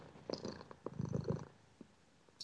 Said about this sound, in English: I'm a sucker for cats purring. I mean, cats in general. Cat will purr in the microphone on command. Yeah, she really actually will. I have just have to put her next to the microphone and then scratch her ear.